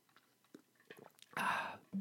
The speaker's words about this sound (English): And with that delicious sip of water signaling it's time for us to go